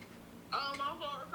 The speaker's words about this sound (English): Odyssey's FaceTiming me right now.